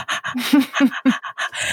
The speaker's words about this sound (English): My dog is panting. So if you hear somebody panting, it ain't me.